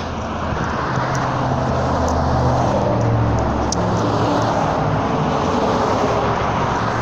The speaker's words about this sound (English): Those are cars. Those are vehicles passing me.